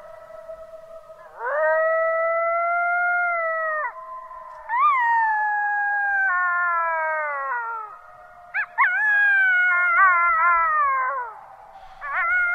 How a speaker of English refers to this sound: These are sounds recorded in Yellowstone of coyotes from our next guest.